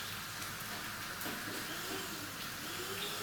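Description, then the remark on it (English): A hand blender whirs steadily through a tomato sauce with garlic, a continuous buzzing motor drone with a hissy, churning edge that holds even in loudness throughout, with no talking. “So just with a hand blender, give it a whiz.”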